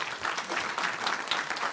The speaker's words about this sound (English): I'll wait while you clap your hands there.